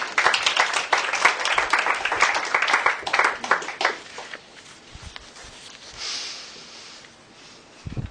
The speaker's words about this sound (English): You could applaud them. They were good, weren't they?